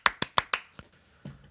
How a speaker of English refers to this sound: It is four claps. It is not five. No, you clapped five. You went... It was four.